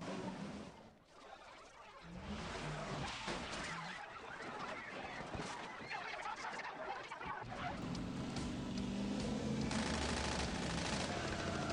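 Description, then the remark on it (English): Rapid, loud bursts of cartoonish, Looney Tunes-style gunfire from a movie's closing car chase rattle on almost nonstop, mixed with squawky, honking tones, and a sustained roar builds toward the end. “Got Looney Tunes sound effects on the guns.”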